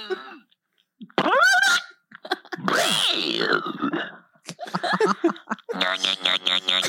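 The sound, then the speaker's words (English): A voice blows a loud, sputtering raspberry that imitates a fart, buzzing for about two seconds after a short vocal lead-in, followed by bursts of choppy laughter. “Wait, what sound do you make when you fart?”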